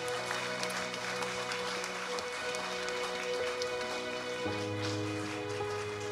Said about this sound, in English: Come on, let's give him a round of applause.